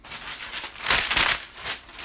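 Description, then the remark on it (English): A blank sheet of paper rustles and crinkles for a couple of seconds, swelling into a louder crumpling burst in the middle before settling back to softer handling, with no voices. “So, also on this day, it was for effect. I can't write. Y'all know I can't write. It's just a blank piece of paper.”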